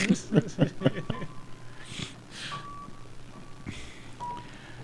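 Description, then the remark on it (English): A truck's reversing alarm beeps faintly and repeatedly outside, steady single tones spaced apart, with people talking at the start and some rushing noise in between. “That's not the movie. That's some guy outside. You stupid small penis truck.”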